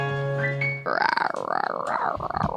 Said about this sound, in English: What's that sound? Debbie, we told you. There's a bear and Björk and Ono. I keep forgetting outside. There's a bear here. Hold on. The bear is knocking, and I know it's the bear